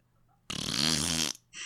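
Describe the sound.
A person blows a loud, buzzing raspberry that mimics a fart, lasting nearly a second, followed by a brief hiss.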